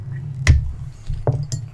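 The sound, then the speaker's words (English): Glass bottles clink together in a toast, a bright ringing tap followed by two lighter knocks, over a low steady background hum. “Cheers.”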